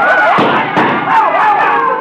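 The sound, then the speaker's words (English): Two sharp gunshots crack in quick succession, under half a second apart, cutting through a loud, continuous crowd commotion full of wavering, overlapping voices, in a radio drama scene set at a funhouse. “My shot got to him, but he kept coming.”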